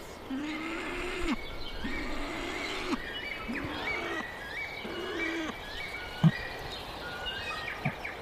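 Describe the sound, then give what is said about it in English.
A male weka, calling his mate and chicks to say he has food, gives a series of low, rumbling growls in drawn-out bursts, while other birds call and chirp more faintly in the background. “So that growling, is that just him reacting to those other birds calling?”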